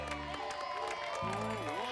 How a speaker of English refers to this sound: Hey, how about a big round of applause for the man who made this all possible today? Yay!